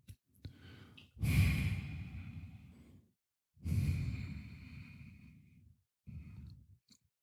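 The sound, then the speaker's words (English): Heavy, loud breathing right up against a microphone: two long, rough exhalations with quieter inhales between them, then a shorter breath at the end, with no talking. “The breathing show.”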